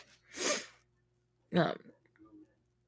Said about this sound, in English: Oh, I'm going to sneeze.